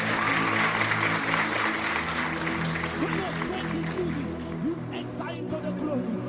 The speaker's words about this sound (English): Somebody clap your hands and begin to pray. When you feel weak, you pray again. Clap your hands and pray.